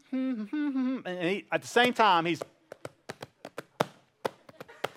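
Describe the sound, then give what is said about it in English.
A boy hums a short, bouncy melodic phrase, then switches to tapping out a quick, uneven beat of sharp knocks for a few seconds. “Now, what I mean by that is literally he goes around all day humming or carrying a beat everywhere he goes.”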